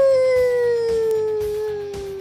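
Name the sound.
howl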